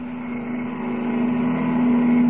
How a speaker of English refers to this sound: On the open road outside the city limits, Kent jams the accelerator down to the floorboard and grips the wheel hard. Roaring into the night, his keen eyes watch the twin taillights gleaming ahead of him.